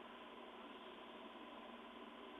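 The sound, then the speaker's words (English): A steady, droning tractor engine rumble heard through a thin, band-limited phone line from a caller on the tractor, continuous and unchanging with a hissy, noisy texture and no one speaking. “Sounds like Jim's on a tractor.”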